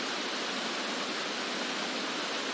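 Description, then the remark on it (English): A steady, full rush of water tumbling around rocks, constant from start to finish, a dense hiss-like roar with no voices or other sounds over it. “To go and sit on those rocks, you know, just in the middle of the water, so you feel absolutely encased in it.”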